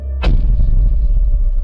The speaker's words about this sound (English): The ground beneath the pirate captain's feet began to rumble. Like cannon being positioned on the sloop decks of old.